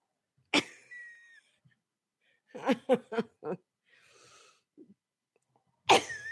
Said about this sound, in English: I'm just, my allergies making me cough.